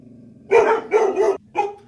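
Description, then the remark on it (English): Several loud dog barks in quick succession, three or four sharp woofs with brief gaps, over a low steady background hum and no talking. “Oh, the dogs, jeez. Yeah, on, they, guys, they bark at nothing.”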